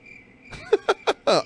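A cricket chirping sound effect: crickets chirp in a steady tone beneath a series of quick, evenly spaced pulses, with four sharp bursts ringing out in the last second, clear with no talking.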